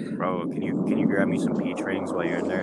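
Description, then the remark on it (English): Steady wind rumbles and buffets against the microphone throughout, a constant low roar beneath a man's casual speech outdoors. “Dude, it's kind of windy out here.”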